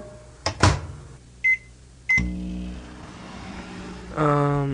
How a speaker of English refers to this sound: Pop it in the microwave here.